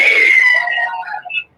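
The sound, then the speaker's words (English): A woman lets out a loud, piercing scream in a horror movie trailer, holding a shrill high pitch for about half a second, then breaking into wavering, fading cries before cutting off. “Now prepare to scream in the new year.”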